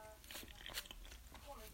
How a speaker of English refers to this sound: I'm trying to not chew too loudly. Hopefully you can't hear me. At least it's not crunchy food, though.